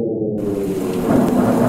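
A rumble of thunder rolls through steady heavy rain in a thunderstorm, loud, with a deep low roar that swells slightly toward the end. No voices.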